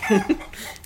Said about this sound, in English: I don't really see why we're trying to talk to this chicken, but maybe that's just me.